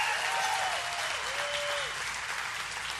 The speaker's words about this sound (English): That's some good preaching right there. We ought to give the Lord a hand clap of praise.